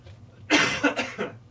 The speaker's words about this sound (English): That's just me coughing.